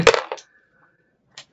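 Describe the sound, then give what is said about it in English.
A die clatters across a hard tabletop in a quick burst of sharp bounces, then settles with a faint ringing, followed by one more light tap a moment later; the die is rolled for an investigation roll in a game. “I almost rolled it on my paper.”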